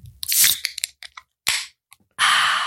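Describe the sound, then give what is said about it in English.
A Geyser Goza beer, a gose-style ale brewed with Icelandic moss, herbs and kelp, being opened: a sharp crack and hiss, a few small clicks and pops, then a steady bright fizzing as it pours and bubbles, with no talking. “Now I'm going to open my Geyser.”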